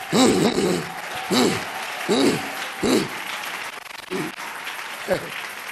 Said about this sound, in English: Your clapping is too weak for this encounter.